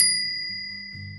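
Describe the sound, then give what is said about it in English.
A burger-shaped bicycle bell, rung by pulling its lever to the side, is struck once, bright, its metallic ring sustaining and slowly fading over a second, with a faint low rumble underneath. “And when it brings, like, you have to pull this thing to the side so that it kind of goes, bring, bring, bring.”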